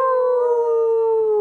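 A single long, loud howl holds a steady pitch and then sags slightly lower toward the end, sounding close and clear with no one talking over it.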